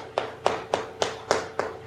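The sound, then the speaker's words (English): A steady, even tapping with a down hammer during a class, about seven crisp knocks in under two seconds at a brisk, regular pace, each a sharp click with a short fade, heard alone with no talking. “is tapping along with us. And if you have a down hammer, feel free to tap at home.”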